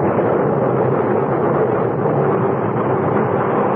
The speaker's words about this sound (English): We could still see the faint outlines of the ship when suddenly, without warning, a cloud of black smoke shot up from her bow. And within moments, a great explosion blew her apart from stem to stern.